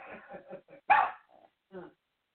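A dog barks at the door several times in quick, uneven bursts, with one loud, sharp bark in the middle and a final bark after a short pause, clear.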